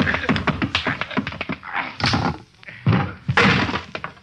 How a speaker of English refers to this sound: Too bad, Feeney. I didn't want to knock you out.